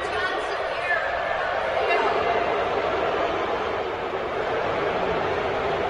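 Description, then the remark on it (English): A large crowd of Lions fans at Ford Field boos during a halftime tribute in a dense, continuous roar that stays steady throughout, muffled as recorded on a phone, with no clear individual voices. “This is Lions booing Sheila Ford during the halftime tribute”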